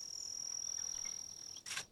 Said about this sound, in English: The cricket? Yeah. Where is it?